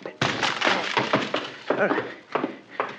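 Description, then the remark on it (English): A locked wooden library door is battered and broken open: a run of about six heavy, irregular thuds with cracking and splintering wood, loud and sharp, between rattling and scraping debris. “Excuse me while I try to ruin a library door.”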